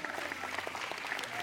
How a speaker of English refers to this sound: Y'all give our kids a big hand clap of praise.